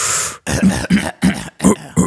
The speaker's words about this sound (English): You got this cough, and I'm like, yo, just lay off the hookah, man.